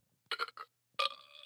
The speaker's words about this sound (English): Ooh, that's awkward. I thought that was the laughing one. That was a little burp.